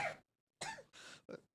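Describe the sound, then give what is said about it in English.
A person coughs in a short series of about four harsh, raspy bursts with brief pauses between them, fairly loud, with no talking. “Stop coughing.”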